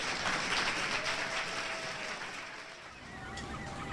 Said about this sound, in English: I want to thank Richard Dreyfuss for taking this time and for spending some time of his life in Hartford. How about a big round of applause for this man? Thank you for coming out. Thank you, TheaterWorks.